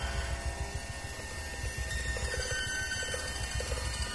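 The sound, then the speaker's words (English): A self-playing installation contraption of bells, zither, motors and synthesizers makes a steady mechanical pattern of rapid low thumps and clicks, layered with sustained, ringing chime-like overtones that shimmer above it at an even volume, with no voices. “Just sort of like a self-playing machine or mechanism, but creates these nice chiming overtones here, as you can hear.”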